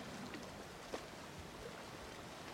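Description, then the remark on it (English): Gentle water laps steadily against the shoreline on the island of Corfu, a soft continuous wash with a faint splash near the start, calm and fairly quiet with no voices. “The sounds of the water lapping along the shoreline on the island of Corfu.”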